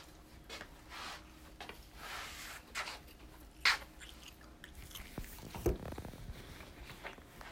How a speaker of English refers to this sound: As you hear me chewing on my breakfast.